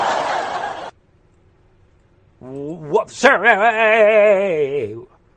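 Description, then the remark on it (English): A short burst of noise, a pause, then a loud, exaggerated laugh-track sound effect, a single warbling, wavering voice cackling for about three seconds. “Sorry, folks, let me get my laughing track for this one.”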